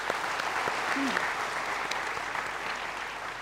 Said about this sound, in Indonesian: Kita kasih tepuk tangan dong untuk Bu Khofifah.